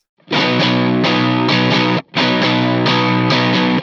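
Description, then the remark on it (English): A loud, gritty electric guitar, with its delay and reverb turned off and pickups switched, plays sustained chords in two matching phrases, each cutting off abruptly with no echo or reverb tail, giving a dry, upfront tone. “But at the same time, so we played that tone, and then we were talking about it, and I did was turn off the delay and reverb and switch pickups.”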